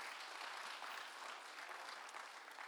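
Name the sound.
audience clapping hands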